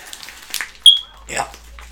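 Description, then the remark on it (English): A smoke detector gives a single short, shrill chirp between bits of talking and rustling. “And there goes the smoke detector again.”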